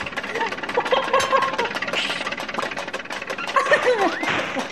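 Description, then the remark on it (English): A little 'clown car' engine driving off toward Epping Forest, its rapid, rattling putter running steady and fairly loud for the whole stretch, with a buzzy, sewing-machine-like chatter. “Are you going to get in your little clown car now?”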